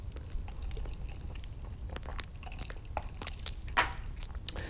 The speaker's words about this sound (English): Pause as I take a little sip of the bevy to wet the whistle.